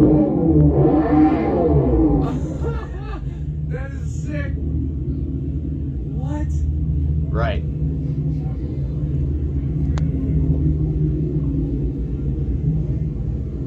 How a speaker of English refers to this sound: Now you can hear that low rumbling like it's a car, a nice powered, a V8 powered car that is.